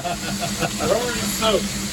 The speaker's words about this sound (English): and we were just discussing the sounds that a steam engine makes.